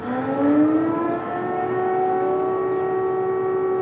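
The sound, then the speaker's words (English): An air raid siren in Kiev, Ukraine, on the first day of the war with Russia, wails, rising in pitch and then holding a steady, sustained tone, loud and continuous throughout, with a faint low rumble underneath and no voices. “Air raid sirens blared out across the capital.”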